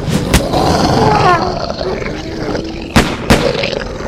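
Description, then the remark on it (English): A werewolf thrashing about gives a deep, growling roar that rumbles loud, while a few sharp, gunshot-like bangs crack out, one at the start and two in quick succession near the end. “The cursed wolf keeps thrashing about.”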